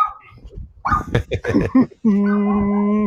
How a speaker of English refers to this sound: You hear that? That must be Milt's dog.